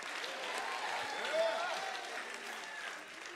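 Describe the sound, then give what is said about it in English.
A large audience claps and shouts together when urged during a sermon, a dense, steady wash of applause mixed with excited cheering voices for the full few seconds. “Come on, clap your hands and shout.”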